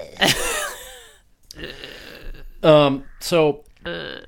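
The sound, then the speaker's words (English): A loud burp rumbles out, followed by a few short, throaty voiced groans and grunts spaced over the next few seconds. “Yeah, it's like an old man burp.”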